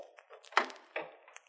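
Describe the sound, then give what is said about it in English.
An outside door being locked: two solid, sharp clunks of the bolt with lighter rattling clicks and scrapes around them, brief and mechanical, with no one speaking. “I just want to lock this outside door”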